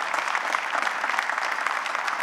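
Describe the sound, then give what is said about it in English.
An audience claps steadily, a dense, even wash of many hands with no pauses and no voices over it. “You can clap.”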